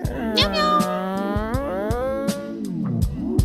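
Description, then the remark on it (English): A cat lets out a long, drawn-out meow that wavers and bends in pitch, fairly loud, with a few faint clicks in the background. “Listen to them. Wait, yeah. Was that Cat Cow?”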